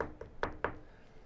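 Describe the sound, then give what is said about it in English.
Three firm knocks on the door of a house, evenly spaced in quick succession, fairly loud, followed by quiet. “Do you keep knocking? I'll knock one more time.”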